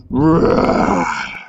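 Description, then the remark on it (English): A single loud, drawn-out roar, growly and harmonically rich, swells quickly and holds for over a second before trailing off. It sounds like a human voice imitating a dragon. “And yet, real or not, they had heard a distinctly dragonish roar.”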